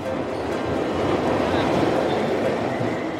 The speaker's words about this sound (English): we are going down the subway station.